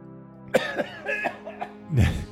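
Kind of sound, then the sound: human body sound, smoker's cough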